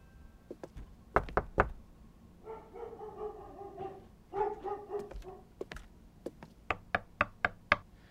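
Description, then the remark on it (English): A few sharp knocks on a door, then a dog barking and whining, followed by a quicker run of five or six firm knocks. No one speaks. “Is your plan just to knock on every door until we find them?”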